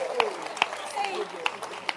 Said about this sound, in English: Can you clap your hands for God? He's kind.